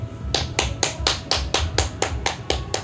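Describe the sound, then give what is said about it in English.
Hands clap in a steady, even rhythm, about a dozen sharp claps in quick succession, fairly loud, with no voices. “Thank you for that standing ovation.”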